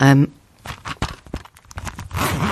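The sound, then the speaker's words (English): A zipper on a pencil case holding quite a few pencils is pulled open in a series of short, rasping bursts, with a voice briefly heard before and after. “So I'm unzipping. So I have quite a few pencils in here.”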